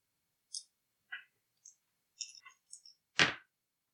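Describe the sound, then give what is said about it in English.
Two dice are rolled for an investigate roll: a handful of small, sharp clicks and clatters spaced out over a few seconds, ending in a louder rattling knock. No voices are heard. “That's pretty good, considering I rolled two dice for that.”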